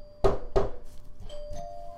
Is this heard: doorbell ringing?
yes